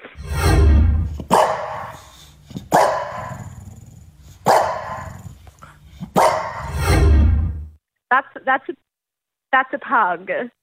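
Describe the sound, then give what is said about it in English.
A French bulldog lets out several loud, rough barks mixed with low, rumbling growls over about eight seconds, followed by a couple of short, muffled voice-like bursts. “I thought it might have been in a French bulldog. It is.”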